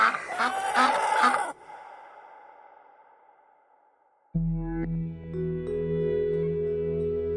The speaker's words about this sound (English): surrounded by all his ducks, turkeys, hens and geese wandering around the yard. It's peaceful.